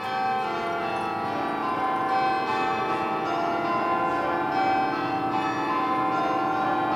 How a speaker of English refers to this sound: That's the very familiar sound of the church bells at Grace Cathedral in San Francisco's Nob Hill neighborhood. The majestic, iconic landmark on California Street, situated between Taylor and Jones.